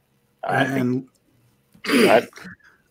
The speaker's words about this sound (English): Sorry, clearing my throat.